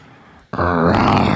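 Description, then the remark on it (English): A man lets out a loud, sudden guttural roar imitating a beast, starting abruptly after a quiet moment and holding with rough, gravelly strain for about a second. “Give me your roar.”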